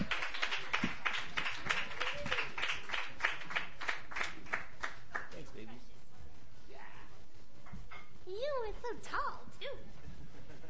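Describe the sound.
An audience claps in a dense, rapid burst for several seconds for a crooner who has just performed, then the clapping thins out into crowd voices and a few high, rising whoops and cheers.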